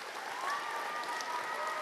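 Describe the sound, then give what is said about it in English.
A crowd applauds steadily, a dense wash of clapping hands at a sustained, fairly loud level with no pauses, as if from a sizable audience. “One more round of applause for everybody.”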